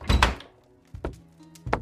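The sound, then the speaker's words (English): A door shuts with a solid, heavy thud and no creak, followed by two softer knocking bumps about a second apart. No voices. “That was oddly jarring, and I missed the door creak.”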